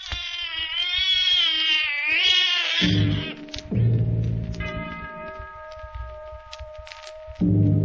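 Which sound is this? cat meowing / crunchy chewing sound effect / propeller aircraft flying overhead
cat meowing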